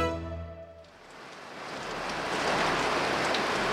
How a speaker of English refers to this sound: It is raining heavily at the University of Yaounde I campus in Cameroon's capital.